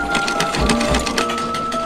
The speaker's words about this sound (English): So now she's on her sewing machine.